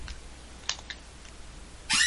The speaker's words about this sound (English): Oh, somebody's opening the door, hey?